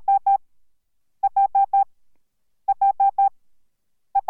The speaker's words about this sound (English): The key and ignition chime for Hondas are four tones in succession, which is possibly a reference to the Morse code for the letter H. Here's Morse code for the letter H.